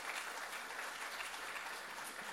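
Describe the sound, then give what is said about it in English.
A crowd at a church worship service applauds the worship team steadily, a dense wash of many hands clapping at an even, sustained loudness with no voices standing out above it. “So let's all give them a round of applause again.”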